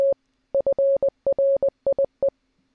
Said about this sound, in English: I was just trying to do the whole intro in Morse code.